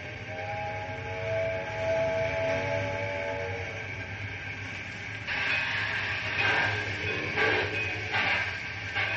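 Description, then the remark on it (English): A steam train starts moving with a steady mechanical rumble and a brief whistle-like tone early on, then loud bursts of hissing steam as it gets underway. “I said get the train underway, do you hear me?”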